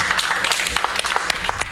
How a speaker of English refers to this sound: You'd think they'd be a little more excited about that. Yeah, that's a smattering of applause.